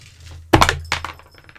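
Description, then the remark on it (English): A single die is tossed onto a hard table for a stealth check in a tabletop role-playing game. It lands with a sharp clack, bounces once more and rattles briefly before settling. Fairly loud, with no talking. “Make a stealth check, Nulara. Just one dice this time.”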